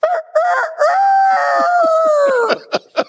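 A rooster crows loudly: a few choppy opening notes, then one long, drawn-out call that trails off, followed by a couple of short, sharp clucks.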